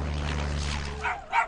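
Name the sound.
dogs barking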